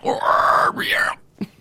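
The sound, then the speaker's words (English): A voice imitates a reptilian wyvern's shrieks: two strained, warbling screeches with a rising-and-falling pitch, the second bending and wavering, followed by a short grunt after a brief pause. “Making like reptilian shrieky sounds.”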